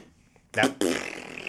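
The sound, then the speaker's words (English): A person imitates a video game stuttering while streaming, making a sputtering, fart-like noise with their mouth, two bursts in quick succession, the second trailing into a longer buzzy rasp, fairly loud. “It turned into farts. It was like that. Multi fart.”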